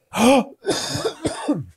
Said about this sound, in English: Like, each person you're talking to, excuse me, I'm about to cough mid-sentence.